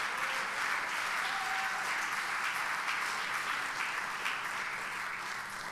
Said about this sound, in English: Clap your hands unto God and give him a praise.